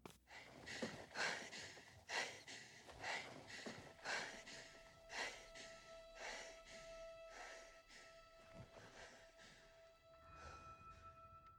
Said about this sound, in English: So it starts. It starts with the black screen. Yep. And all we hear is breathing. Yep.